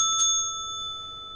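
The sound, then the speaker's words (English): A single bright bell is struck once, its clear metallic tone ringing out and slowly fading over about a second and a half, loud with nothing else around it. “ring the bell for the DWI podcast.”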